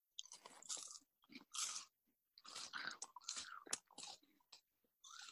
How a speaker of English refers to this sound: Make sure your mic is close so you can hear the chewing. All right. Yeah. We want to hear this crunch. Oh, and chew with your mouth open.